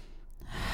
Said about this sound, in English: This breath, the more you practice it, this deep breathing just has this wonderful way of just calming your body, relaxing your body.